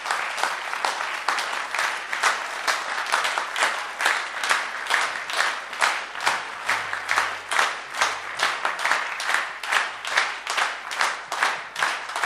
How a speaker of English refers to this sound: Are you ready? This is for everybody. Number two, clapping your hands. Everybody, start a clap.